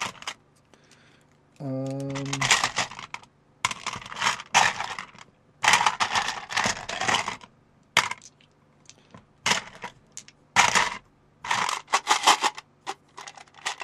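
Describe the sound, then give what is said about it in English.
Dice rattle and tumble across a hard surface in a series of clattering bursts, several rolls in a row with short pauses between, fairly loud, after a brief hummed voice at the start; the dice are rolled for damage in a tabletop role-playing game. “Do I even have enough dice for this?”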